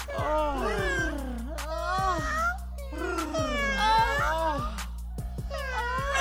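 Several drawn-out, wavering yowls overlap in close succession, rising and falling like female cats in heat, with a low steady hum underneath and no clear speech.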